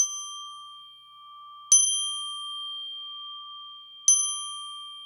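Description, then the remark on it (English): A clock bell strikes twice, about two and a half seconds apart, each clear metallic stroke leaving a long, steady ringing tone that hangs between the strikes. No voices. “And as the last stroke ceased to vibrate, he remembered the prediction of old Jacob Marley”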